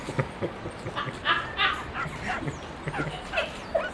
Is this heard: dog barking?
yes